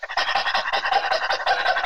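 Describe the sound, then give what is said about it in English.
A voice imitates a dog panting, playing with breath to show how dogs breathe: quick, breathy huffs repeated in a steady rapid rhythm, fairly loud and unbroken for about two seconds, with no words spoken. “How do you think like dogs breathe?”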